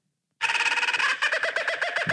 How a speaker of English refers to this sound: Not by a long shot, no. This is every bird except an eagle.